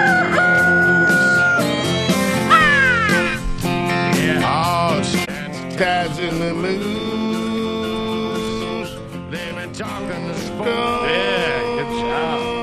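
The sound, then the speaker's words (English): A rooster crows loudly amid a busy, dense musical backing, its rising and falling cry repeating over steady instrumental sound with no clear talking. “Two bros yapping a while the rooster crows.”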